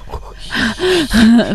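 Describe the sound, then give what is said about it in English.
Loud, ragged panicked breathing from a woman who is hiding, a quick run of sharp gasping inhales and shaky voiced exhales that rise and fall in uneven bursts. “She can hear you. You're breathing so hard.”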